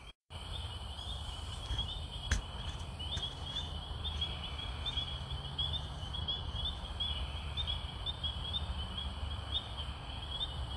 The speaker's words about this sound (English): Hello listeners, I'm here at outside in the woods. In the middle of the woods at 9 p.m. at night, and it's very dark, and I'm here to interview these fucking bird things. So, what say you, weird birds?